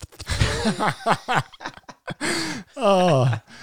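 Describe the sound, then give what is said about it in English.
A person loudly imitates a coffee roaster's tasting slurp while drinking water, with a run of wet sucking bursts and squeaky voiced noises, ending in one long, drawn-out slurp. “And, he does his little thing where when he sips his coffee, I'm going to do it.”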